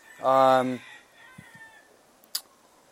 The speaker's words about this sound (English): Do I hear chickens? Yeah, well, there's wild feral chickens over here in Hawaii. So so anywhere you go, you're going to hear them in the background and running around, and they're totally like wild. So you can't really domesticate them.